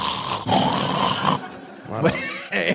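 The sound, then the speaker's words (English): A voice imitates sexual mouth noises: a sustained throaty, gurgling growl, then a short break and two shorter wet, strained bursts. “He'd probably make that noise like her giving the blowjob.”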